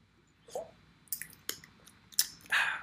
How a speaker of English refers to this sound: Let me take a little sip of gold though.